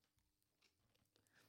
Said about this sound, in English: I took a big mouthful of ice cream while … was talking, and it hasn't quite left my mouth yet. Let me take a sip of water.